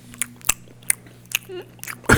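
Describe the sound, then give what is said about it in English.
Crunchy chewing of food, with a series of sharp, irregular bites and crunches over a steady low electrical hum. A brief soft vocal sound slips in midway. “I'm chewing on it.”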